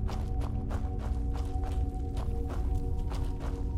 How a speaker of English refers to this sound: Yeah, yep, this is a very run-down, cobwebby piece of these Dwarven ruins, and my feet are still slapping on the stones.